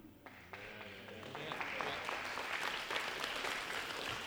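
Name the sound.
audience clapping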